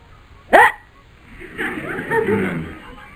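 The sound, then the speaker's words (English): A single sharp, loud hiccup pops out near the start, followed by a low, muffled vocal murmur that rises and trails off over the next couple of seconds. “I've got the hiccups.”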